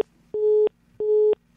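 A phone call drops over a poor network and gives way to a busy tone: two evenly spaced, steady electronic beeps with short gaps between, clear and fairly loud over a faint low hum, with no voices.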